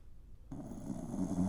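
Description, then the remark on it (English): A dog named Travis snoring: a low, raspy rumble kicks in after a brief quiet moment and drones steadily through one drawn-out breath, with no talking. “Oh, can you hear Travis snoring?”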